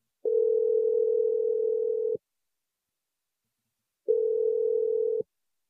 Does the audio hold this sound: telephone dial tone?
yes